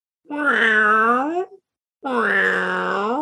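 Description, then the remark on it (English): Two long, drawn-out yowls from huge alley cats in the distance at an intersection of alleyways, with a wavering, whining pitch, separated by a brief pause. Each cry is loud and sustained, with no other sounds around them. “And as you look at either end of the intersection of alleyways that you're in on 2 sides, there are huge cats.”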